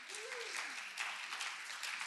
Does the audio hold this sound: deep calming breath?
no